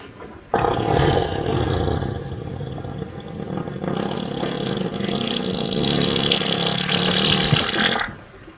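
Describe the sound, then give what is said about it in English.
A long, loud elephant fart, one continuous rumbling blast lasting about seven seconds, deep and rough with a buzzing, roaring quality, with no talking over it. “I've got a 7-second elephant fart.”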